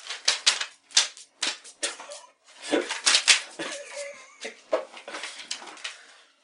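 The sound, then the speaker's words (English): A pen scratches quickly across paper in short irregular strokes and scribbles with brief pauses between them, with no talking over it. “I'll fucking write it down, you got paper.”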